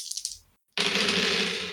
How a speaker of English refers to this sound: this Cat Tamani female just bursts out, leaps into the air, and he is caught so off guard. And he gets knocked straight to the ground. There's a nice ding sound as his As his armor hits the ground.